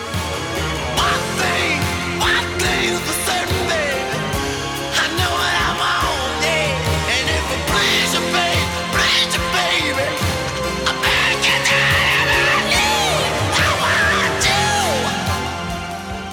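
A soul ballad plays loud and continuous, an emotive high vocal sliding and wailing over dense, layered backing instruments with no speech.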